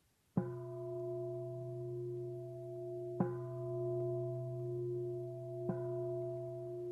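Meditation bells are struck three times, each sharp strike blooming into a warm, low, humming tone with shimmering overtones that sustain and overlap the next. No one speaks.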